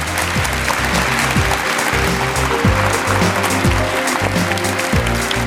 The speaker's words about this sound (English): So thank you very much to the panel. If you give them a round of applause, please.